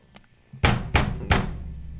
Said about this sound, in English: We gotta go knock on the door, man. I'll do the honors.